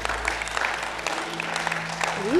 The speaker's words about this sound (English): Do that patty cake clap if you want to, because we have joined together.